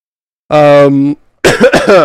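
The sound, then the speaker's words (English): A voiced throat sound from a person whose throat is irritated by pollen, a short hum-like rasp followed after a brief pause by a couple of rough, bursting coughs, loud with no talking. “So I might occasionally cough.”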